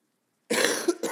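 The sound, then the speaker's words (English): After a brief silence, a loud, close-up cough erupts right at the microphone, a harsh burst followed quickly by a second shorter hack. “I literally made it through the whole thing without coughing into the microphone.”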